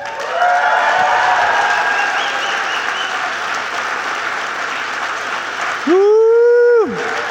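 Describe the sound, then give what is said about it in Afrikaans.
A large church audience stands and applauds the Lord loudly and steadily for about six seconds, then a single sustained tone with a rising and falling pitch rings out briefly at the end. “Kom ons staan op en ons klap vir jou hande.”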